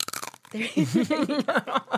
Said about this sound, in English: Make sure you like take a bite into the mic because it's real crunchy.